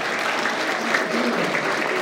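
An audience at a church service claps steadily for a member, a dense and sustained wash of applause at moderate volume with no breaks, some faint voices mixed into the crowd noise.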